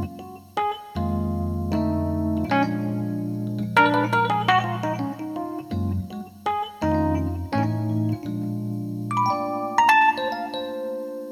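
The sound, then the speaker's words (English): Bell-like chords from an emulated Rhodes electric piano ring out with a soft, mellow attack, shifting every second or so, while a faint steady hiss from the Rhodes and its amp, with the amp treble turned up, sits underneath. No voices are heard. “Oh, now you can actually hear the hiss from the actual Rhodes itself.”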